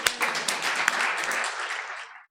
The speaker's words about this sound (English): So anyway, I'm really glad he could be here. How about a round of applause for my good friend Lee Holdridge?